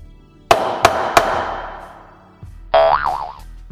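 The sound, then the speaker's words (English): Three sharp, ringing gavel bangs in quick succession fade out, then a loud cartoon boing springs up with a wobbling, bouncing pitch. No one speaks. “You're going to need the gavel bang. How about a gavel bang into a boner?”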